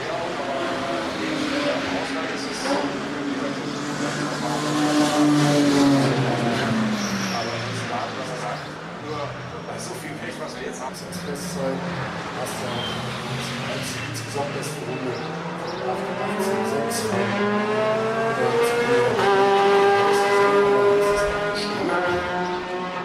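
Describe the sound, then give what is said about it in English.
A class-leading Hyundai Veloster race car roars past on track, its loud, buzzing whine sliding down in pitch, then climbing again as it revs through the gears, with a steady roar underneath throughout. “Class leading Hyundai Veloster making all that racket just there.”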